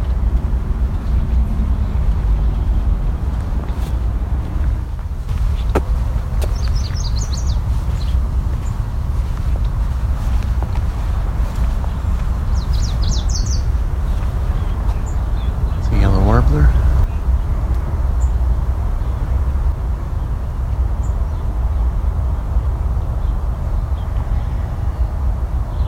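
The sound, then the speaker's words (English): Two brief, high, sputtering eastern kingbird calls, faint and spaced several seconds apart, rise over a loud, steady low rumble like a boat engine. “Eastern kingbird.”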